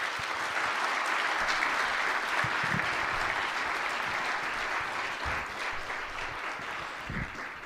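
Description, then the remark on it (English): Sustained audience applause welcoming panelists at ENC, a dense, steady wash of many hands clapping at an even level for several seconds, tapering slightly toward the end with no voices over it. “So would you, again, just by applause, would you just welcome them here today to ENC.”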